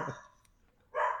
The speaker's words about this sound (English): I got to go before this dog interrupts us anymore.